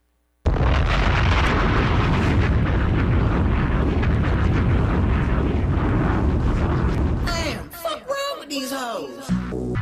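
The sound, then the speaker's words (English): A loud, booming bomb explosion sound effect erupts into a long, rumbling roar that holds for several seconds, then fades as a voice begins speaking over the dying rumble. “Bombs!”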